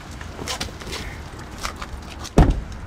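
A car door swings open right next to another car in Iowa in January, with a few faint clicks and rustles, then a single loud, solid thunk near the end; the other car is not dented.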